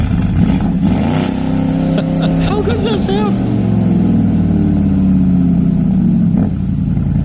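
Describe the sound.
A deep V8 engine revs hard in a new 2021 Cayenne GTS sports SUV, its stock standard exhaust rumbling loudly with rising and falling throttle blips in normal mode and then sports mode, while a man talks briefly over it.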